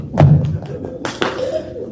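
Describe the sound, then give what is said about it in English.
A few hollow thuds of knuckles rapping on a door, with a single knock followed by a quick pair of raps, fairly loud over a faint background murmur. “But that's when you go up to a door, you knock on the door, and then you'd run.”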